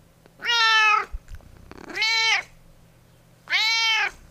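Molly the cat meows three times, each call a drawn-out, rising-then-falling tone, evenly spaced with short quiet gaps and a faint steady hum in the background.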